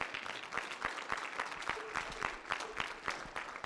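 An audience claps steadily in a dense, continuous wash of applause as a praise offering to the Lord, with scattered louder hand claps standing out and faint voices calling out underneath.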